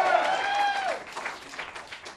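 An audience bursts into applause, opening with a high, pitched whoop that slides downward before settling into a steady wash of clapping for about two seconds.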